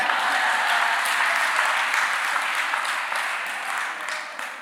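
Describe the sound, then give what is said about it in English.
A crowd of people applauds steadily, a dense wash of hand claps at fairly loud volume that gradually tapers off toward the end. “Can you clap for me?”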